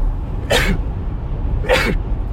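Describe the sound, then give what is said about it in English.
Two sharp sneezes, about a second apart, fairly loud, over a low background hum with no talking. “Bless you. Excuse me, thank you.”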